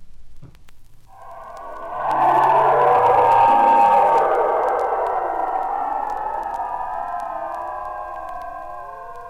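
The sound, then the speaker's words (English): Ring-modulated electronic sine tones swell into a dense, metallic cluster of wavering, gliding pitches over low stepped tones, then slowly thin and fade. No voices. “If sine tones or bell sounds are ring modulated, the sort of sounds obtained are identical with these passages.”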